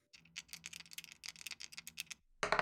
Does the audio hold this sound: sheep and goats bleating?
no